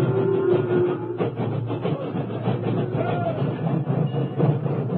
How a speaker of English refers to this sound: The doors were closed, and then, at sunset, an engine backed into position.